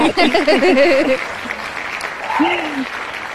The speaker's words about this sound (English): Congratulations. She needed another round of applause.